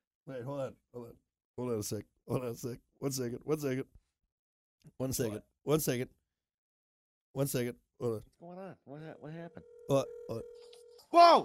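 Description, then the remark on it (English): A phone rings near the end with a steady electronic tone lasting over a second, sounding alongside a voice that talks in short bursts throughout. “Oh, you're not going to answer?”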